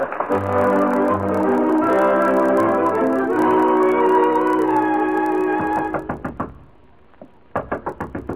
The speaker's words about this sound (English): No use knocking. I told you a dozen times. Miss Fawcett ain't seeing no gentleman in this here dressing room.